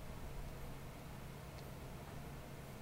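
Steady electronic static with a low, droning hum, radio interference from a cell phone picked up by a microphone, running quietly and evenly throughout with no one speaking.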